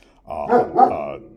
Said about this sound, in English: That's my security dog, my comfort dog. I don't like to make that public, but I guess it's already out of the bag now. But that's my my dog, my security blanket, so to speak.